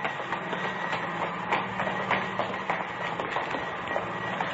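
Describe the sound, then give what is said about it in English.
A large theater air conditioning unit runs steadily with a loud, constant mechanical roar and low hum, broken by faint irregular rattles and clicks. No voices are heard. “Air conditioning unit for the theater.”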